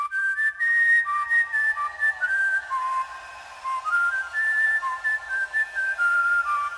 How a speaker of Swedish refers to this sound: Och vi måste ju börja med EM-låten. Och här liksom lyssnar vi lite på hur EM-låten låter. För nu är den ju släppt.